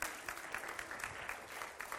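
An audience claps steadily for a volunteer coming up, a dense, continuous patter of many hands at an even loudness, with no voices standing out.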